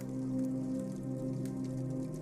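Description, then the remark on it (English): Steady rain patters against window glass of a thatched-roof house, a soft continuous tapping with a low, muffled hum beneath it, fairly quiet, with no voices. “Rain begins to fall and taps against the windows in a staccato patter.”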